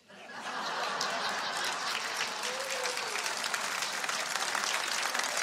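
A crowd bursts into sustained applause, dense and steady clapping for several seconds, with a few scattered laughs mixed in; older people in the audience applaud a comedian's joke.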